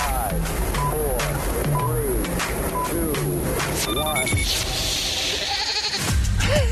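A goat bleats over and over in quick, wavering, loud cries against a busy noisy background that shifts into a brighter hiss near the end.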